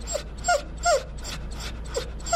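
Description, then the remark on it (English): An English setter named Missy cries in a string of short, high, falling whimpers, about five in quick succession, with breathy panting between them and a low steady hum underneath, lying on a blanket in a concrete enclosure in an animal hospital's intensive care unit, her neck bandaged and body in a metal brace. “Just down the hall, an English setter named Missy cries and pants as she lies in a concrete enclosure on a blanket.”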